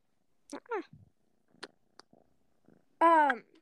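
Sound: cat purring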